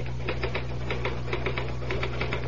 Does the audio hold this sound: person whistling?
no